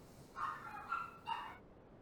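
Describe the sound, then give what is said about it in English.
A dog barks about three times in quick succession, the short yappy barks sounding faint, with no talking over them. “Is it picking up the dog?”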